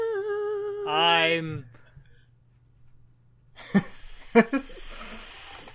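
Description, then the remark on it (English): A voice imitates a snake's hiss: a long, breathy hiss that swells up after a short sung or drawn-out vocal sound and a brief pause, fairly loud, with a few small clicks. “I'm like a snake.”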